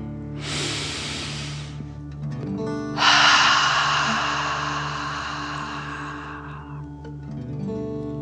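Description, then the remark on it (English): A deep breath drawn in sharply through the nose, filling the belly, a brief pause, then a longer, forceful, hissing exhale in a relaxation breathing exercise, heard over soft, steady background music with no talking. “Remember to breathe in through your nose, filling up your belly, and then out, pretending you are breathing fire. Deep breath in and out.”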